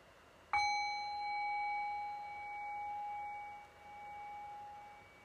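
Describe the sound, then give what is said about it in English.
A single meditation bell is struck once to mark the end of a meditation practice, its clear metallic tone ringing out and slowly fading over several seconds amid quiet. “And I'll cue that just by ringing the bell one time.”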